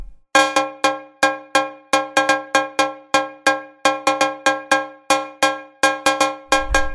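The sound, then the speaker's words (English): A bright, metallic cowbell sample from a keyboard instrument's built-in percussion sounds, struck repeatedly in a quick, syncopated pattern, each hit ringing sharply then decaying fast, played loud with no voices. “That's like a cowbell.”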